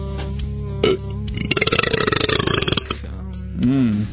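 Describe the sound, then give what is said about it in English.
A long, loud, rattling burp on the Hideout show on Real Radio 104.1 that croaks in rapid pulses for over a second, bracketed by short voiced grunts before and after. “What? Because I have, gas?”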